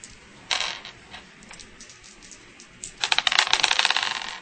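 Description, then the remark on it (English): Dice are rolled for a fast talk roll, clattering across a hard tabletop: a sharp initial toss, scattered light clicks, then a dense burst of rapid rattling tumbles near the end, fairly loud with no talking. “All right, make a fast talk roll. That's a dice.”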